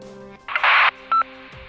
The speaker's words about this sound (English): I was never really the type to get nervous about phone calls and that sort of thing, but I had to take a deep, calming breath before I could bring myself to press the button on the side of the radio.